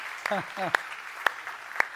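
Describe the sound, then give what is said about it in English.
Scattered applause for the graduating class of 2019 and their parents, with a few sharp, distinct claps at a steady, unhurried pace, plus a brief vocal sound near the start. “That's who really needs applause, I think, right?”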